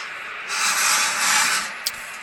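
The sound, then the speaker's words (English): A sliding door onto a patio rolls open with a long, airy scraping rumble lasting over a second, ending in a sharp little knock as it stops. No voices. “you could hear the sliding door, and then standing out on the patio yelling at the top of her lungs”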